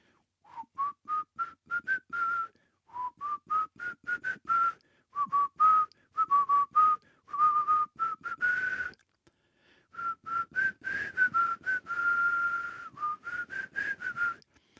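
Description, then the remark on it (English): Someone whistles a bouncy TV theme tune, short clipped notes in quick melodic phrases with brief pauses between, steady and fairly loud, with no talking. “We can't whistle that. My whistle's gone.”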